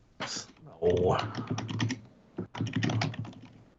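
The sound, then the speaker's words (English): Rapid typing on a computer keyboard as someone looks something up, a dense patter of clicking keys in two bursts separated by a short pause, with faint voices murmuring underneath. “Are you typing what's the dick bird?”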